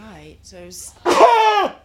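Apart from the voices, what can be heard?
sneeze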